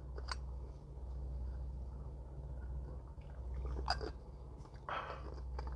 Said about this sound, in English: Excuse me, I need a sip of water.